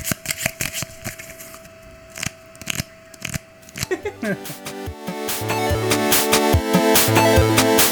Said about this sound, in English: Like, have you any idea how hard it is to record these episodes and not flick cards incessantly? Oh yeah, I have a pile right next to me. Yeah, me too. Yeah, I'll just you know what? I'll play us out to the sound of my people.